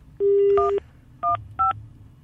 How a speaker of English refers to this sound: That's literally how random I'm dialing here.